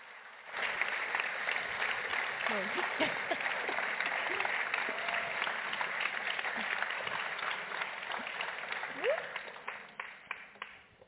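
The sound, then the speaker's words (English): Steady applause from an audience welcoming panelists at the start of an evening panel, a dense wash of many hands clapping at an even level for about ten seconds, with a few faint voices underneath before it thins out at the end. “And what better way to begin our panel in this evening with a round of applause.”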